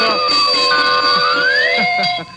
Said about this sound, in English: Listen, fellas and girls, you know what I'd like to do right now? Well, I'll tell you. I'd like to ring bells and blow whistles.